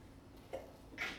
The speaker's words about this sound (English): Bless you.